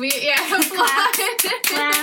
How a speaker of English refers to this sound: Claps.